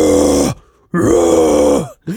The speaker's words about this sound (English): And I'm gonna bash my hand in the middle of the steering wheel twice. And just right then you hear from within the car. This is insane. A dragon's roar.